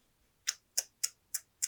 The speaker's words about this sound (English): Hold for sound. I have a dog chewing a bone against my bedroom door.